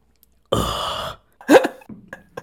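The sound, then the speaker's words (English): A voice does an impression of Corpse Husband drinking water: a long, low, raspy gulping sound, then a sharp burst like a swallow or gasp, followed by a few faint clicks. No words are spoken. “But I think he would have enjoyed this impression of Corpse husband drinking water.”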